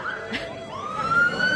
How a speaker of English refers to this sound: we're in London, guys, constant sirens.